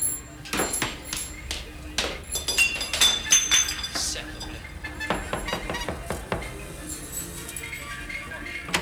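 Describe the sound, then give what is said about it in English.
Glass milk bottles clink and rattle against each other in quick, irregular bursts, bright sharp chinks piling up over a low street rumble, with a few louder knocks midway through, in a recreated Paris street scene. “he said how much fun they had recreating the Paris street scene with the milk bottles.”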